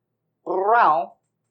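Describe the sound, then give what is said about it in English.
A single drawn-out meow from a cat, fairly clear, rising and then falling in pitch over under a second before trailing off into silence. “It would mean so much, kitty. This cat that I love you so much.”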